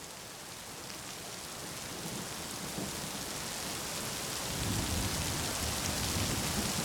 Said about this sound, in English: What kind of storm comes out like this?